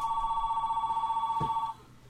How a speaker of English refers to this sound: Oh, phone, just a second.